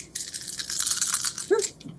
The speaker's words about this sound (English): All the dice are coming out. Well, most of the dice.